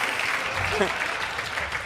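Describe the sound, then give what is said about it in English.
Audience clapping, a dense and steady patter of many hands that runs unbroken from start to finish at an even, moderate loudness, with a brief faint voice partway through. “Let's just hear it for ourselves. Where's the clapping lady?”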